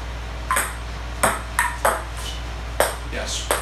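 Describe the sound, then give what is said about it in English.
A ping pong ball clicks sharply against a small table, about half the size of a regular ping pong table, about six times in an uneven back-and-forth rhythm, each hit bright and crisp over a steady low hum. “Normally this would be played on a ping pong table.”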